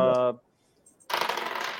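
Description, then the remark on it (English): Racing dice being shaken and rolled rattle and clatter loudly and continuously for the last stretch, after a short voiced sound at the start, a near-silent pause and a couple of faint clicks. “Let me warm up these dice real fast.”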